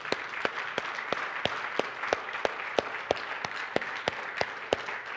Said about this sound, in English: Y'all take 5 seconds, give God another round of applause.